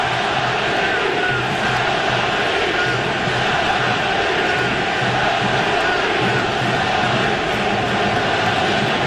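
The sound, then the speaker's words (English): A loud, dense crowd roar fills the whole stretch, a steady wash of cheering voices that holds at high volume without pause, sounding big like a packed stadium: the baseball crowd at the Coliseum during a 2023 game against Tampa Bay. “You heard the crowd go silent and now getting very loud at the Coliseum.”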